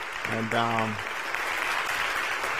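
A crowd at the EBA breaks into steady, dense applause, a hand clap of praise to God for the speaker's mentor, filling the whole clip, with a brief vocal shout or cheer rising over the clapping near the start.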